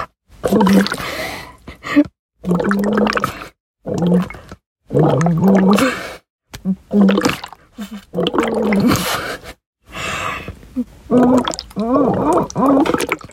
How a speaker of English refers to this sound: Just to clarify, what I was doing there, I was blowing a biodegradable straw into a cup and humming it.